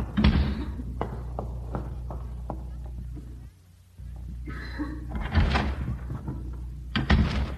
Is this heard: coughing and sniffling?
no